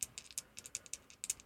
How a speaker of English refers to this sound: I'm still shaking the dice.